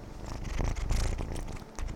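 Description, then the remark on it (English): A foster kitten riding on a person's shoulder purrs steadily, a low rumbling drone with soft rhythmic pulses that swells and continues for a couple of seconds with no one talking. “foster kitty Gus Gus is currently riding on my shoulder. Say hello, Gus.”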